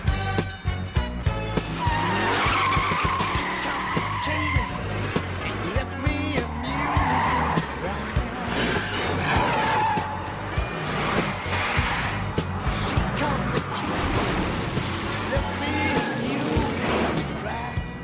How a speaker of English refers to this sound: Car's got a lot of pickup. It's got a cop motor, a 440 cubic inch plant. It's got cop tires, cop suspension, cop shocks. It's a model made before catalytic converters, so it'll run good on regular gas.